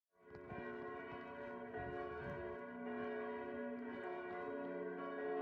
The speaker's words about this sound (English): Ring out the old, ring in the new, ring happy bells across the snow.